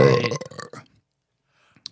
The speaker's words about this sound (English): And burping.